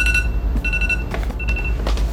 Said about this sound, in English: As my phone goes off, sorry about that. Real time over here.